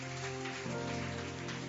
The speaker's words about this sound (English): Clap unto the Lord, everybody.